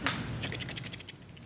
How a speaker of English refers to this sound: Still hear some rustling. It's a great sound right there.